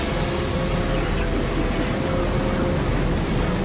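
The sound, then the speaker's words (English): A steady, dense roar of wind and rushing sea, like ships moving across open water, loud and unbroken throughout with no distinct voices. “Yeah, and even though it was a long time ago, we do have a clip of the Spanish Armada right here.”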